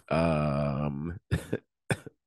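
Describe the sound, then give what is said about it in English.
A sick person gives a drawn-out, strained vocal groan, then two short, sharp coughs, with a brief pause between them and no talking. “sorry for all the coughing in the delays.”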